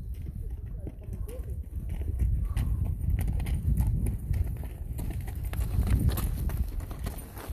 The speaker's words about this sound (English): Hey, we're back. We almost got ran over by a herd of donkeys.